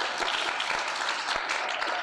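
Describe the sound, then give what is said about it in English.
Live audience applause, a dense steady wash of many hands clapping at once, sustained and fairly loud throughout with no voices on top. “Can you guys give a round of applause?”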